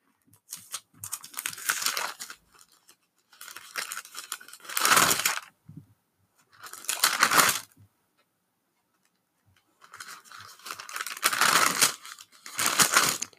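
Pages of a book of scripture rustle and flip in several papery bursts as someone looks for a psalm, with short quiet gaps between them, crinkly and soft, with no voices present.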